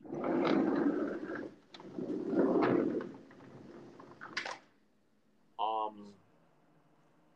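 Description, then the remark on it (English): A blue jay calls outdoors with loud, harsh bursts over a stretch of noisy, muffled background activity, then a brief pause before one short, clear call near the end. “All I hear is a bird. It's a blue jay.”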